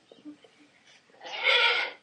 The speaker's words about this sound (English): I bring you a goat. Meh. You know, for milking.